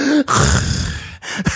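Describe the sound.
A voice imitates heavy, labored breathing: loud, rasping breaths with a couple of short pauses between them, a groan-like strain underneath, and no words.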